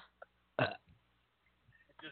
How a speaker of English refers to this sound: Excuse me. At least that little burp I just gave was a little bit better than the SBD bomb I got this morning.